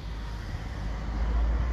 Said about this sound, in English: Gonna have to forgive me for the car activity here. I don't know if there's much I can do about that.